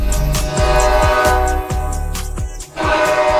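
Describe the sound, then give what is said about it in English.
A loud, sustained air horn blares continuously, a deep bellowing hockey goal horn for Jacksonville Icemen playoff hockey, with pulsing percussive hits underneath and no talking. “No, not a train. Let's light the lamp over and over and over again this weekend, Saturday and Sunday at the arena as playoff hockey continues in Jacksonville with the Icemen.”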